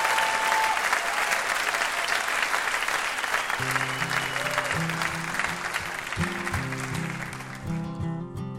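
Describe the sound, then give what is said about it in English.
A big burst of sustained applause from the Ask Me Another audience for VIP guest Piper Kerman, dense crackling clapping that stays loud throughout, with steady horizontal music tones rising underneath partway through and continuing to the end. “How about a huge round of applause for our VIP, Piper Kerman?”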